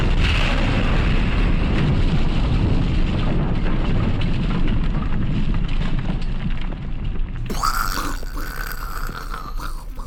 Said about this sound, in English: You're gonna insert some explosion noises.